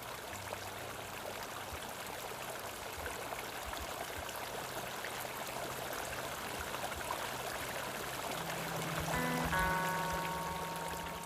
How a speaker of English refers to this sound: We were entirely alone, listening to the babble of the water over the rocks.